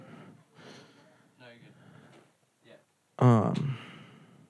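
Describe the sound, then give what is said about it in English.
A door slams shut once, loud, with a heavy thud that rings out briefly. Quieter talking and shuffling come just before the slam. “Here, let's close that door, yeah.”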